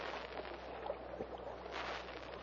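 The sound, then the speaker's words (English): A steady, broad rush of swift river water surges around a boat shooting out of a roaring cavern into a narrow gorge between tall cliffs, with brief splashes and gurgles rising through the continuous noise, moderately loud, no voices. “As the boat shoots out of the roaring cavern, its occupants gaze around in wonder.”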